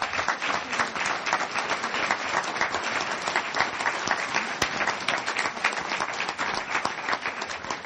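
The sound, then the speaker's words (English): An audience applauds the candidates at the end of an aldermanic debate, many hands clapping in a dense, continuous patter that holds an even loudness for the whole stretch without fading. “I would ask you to give a round of applause for our candidates, please.”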